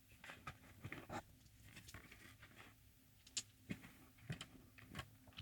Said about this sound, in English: It's me opening the case. Now I'll be taking the dice out of the little holders.